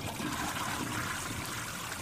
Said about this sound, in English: And right when you come in and you just basically look around to see everything, you hear it. And it's a toilet flushing.